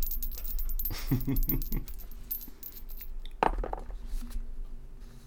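Dice rolled during a tabletop role-playing game rattle and tumble across a hard tabletop in a quick burst of clicks, then settle; a sharper knock follows a moment later, fairly clear against quiet room noise.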